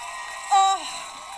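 A crowd applauds and cheers a thank-you speech in a steady wash of noise, with a brief, loud tonal whoop or whistle rising out of it for a moment before fading back into the clapping.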